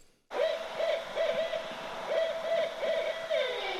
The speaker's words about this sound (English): Ah, the call of the owls. You who know me best know that I've got a couple of owls hanging from the ceiling, or shall we say flying in the owl's nest, and it was quite difficult to get them to record that